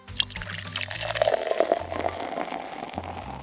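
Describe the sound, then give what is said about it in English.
A vinegar and red or orange food coloring mix pours steadily through a funnel into the top of a model volcano, a continuous trickling and gurgling splash lasting a few seconds, with a faint low hum underneath and no talking. “Then you add the vinegar and food coloring mix into the top of the volcano. I like to use a funnel when I pour it in so I don't make a mess.”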